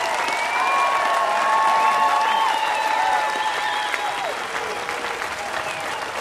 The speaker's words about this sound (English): The crowd definitely into it and calling for an encore. I don't know if we're going to see it or not.